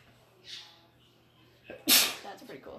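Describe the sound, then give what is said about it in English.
A single sharp, loud sneeze bursts out after a brief quiet stretch with a faint intake of breath, then trails off into soft rustling. “Bless you.”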